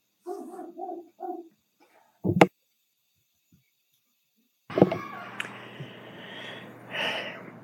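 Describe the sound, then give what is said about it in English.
Dogs bark in short bursts, a few quick yips followed by a sharper, louder bark, then a longer stretch of rough, noisy commotion with more barking mixed in. The household's dogs and the neighbor's dogs are barking back and forth. “Our dogs and the neighbor dogs are having a long discussion, and I apologize for the amount that you're able to hear it.”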